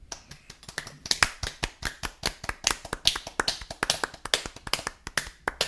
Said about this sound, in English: Give me applause again.